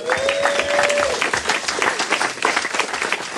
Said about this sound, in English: Give him a round of applause, hey?